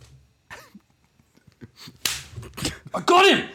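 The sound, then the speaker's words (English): A few sharp hand slaps crack in quick, uneven succession as someone swats and kills a fly in a room, with bits of voice and an exclaiming voice around them. “That fly was like, he's been in my room for 3 days, man. Oh, that's insane. And you got him.”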